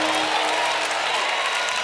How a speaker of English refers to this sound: Clap like you gonna drive yourself. Clap like you gonna bathe yourself. Clap your hand. Hallelujah. Hallelujah. Oh my God. Hallelujah.